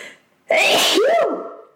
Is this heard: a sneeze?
yes